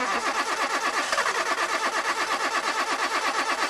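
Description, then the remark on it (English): A car engine cranks with a fast, steady chugging rhythm, loud, the starter grinding continuously throughout without anyone speaking. “Want to stop engine problems before they start?”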